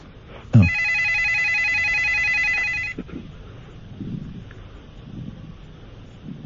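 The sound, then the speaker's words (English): A telephone bell rings loudly in one sustained burst of rapid, rattling trills lasting a couple of seconds, then stops, leaving faint wind and muffled background murmuring. “Are you going to answer the phone”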